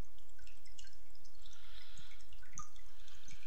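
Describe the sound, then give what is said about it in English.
Cold water drips and sloshes, with scattered irregular plinks and a soft liquid wash over a low rumble, fairly quiet and with no voices. “God, this water's cold.”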